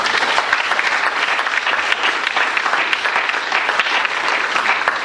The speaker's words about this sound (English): Well, can I start by asking for a round of applause for our panel, please?